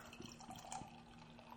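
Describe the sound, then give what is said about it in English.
Soray Sauvignon Farmhouse Ale from Snake Lake, a wild farmhouse ale re-fermented with Sauvignon Blanc grape must, pours steadily into a glass, a soft continuous splashing and fizzing with a few gurgling bursts, fairly quiet, with no one speaking. “I'll pour you some and let you read about that.”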